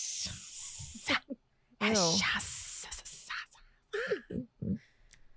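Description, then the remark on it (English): A voice imitates Voldemort hissing like a snake at Lucius, with two long, harsh hissing bursts, the second blended with a wavering voiced growl, followed by a few short muttered syllables. “And Voldemort basically hisses at him and he's like, lies.”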